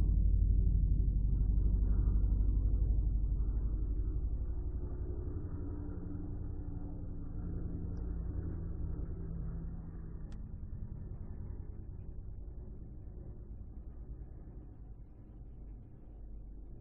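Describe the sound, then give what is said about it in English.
A low, droning rumble of an airplane passing overhead, loudest at the start and slowly fading as it moves away, with a steady engine hum and no voices. “And there's a plane in the background.”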